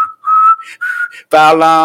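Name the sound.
whistle being blown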